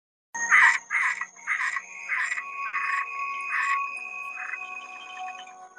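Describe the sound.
A frog croaks in a quick series of about seven or eight raspy calls that fade slightly, over a steady thin background of insect-like whine. No one speaks.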